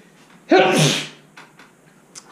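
A single loud, sharp sneeze bursts out close to the mic, a quick intake followed by an explosive, breathy release, then fades into quiet room tone with faint rustles.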